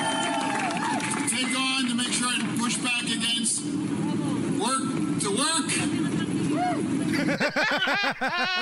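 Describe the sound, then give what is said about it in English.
A dense, continuous murmur of many voices from a crowd gathered at a political rally, with overlapping indistinct speech and occasional louder voices rising out of the steady babble throughout. “I mean, there is a crowd there, you can tell, but nobody knows what he's talking about.”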